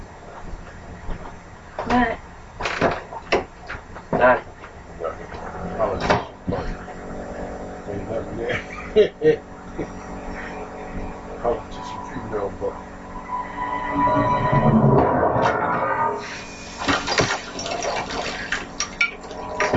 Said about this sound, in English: She's screwing into that soft ass boss's fucking wood door. But didn't she say he also screwed it into the frame? To the frame.